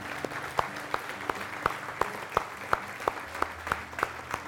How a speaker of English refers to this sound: Let's give the Lord just a round of applause.